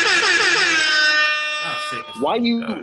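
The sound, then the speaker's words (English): A loud, blaring air horn blast sounds and holds for over a second before cutting off, followed by people talking. “No, I was just gonna say, shit, get a couple of air horns because no, it's some sick ass niggas out here.”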